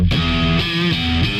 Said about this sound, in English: Both the guitar tones, like when the other one comes in as well, and the bass, they all just sound like, yeah.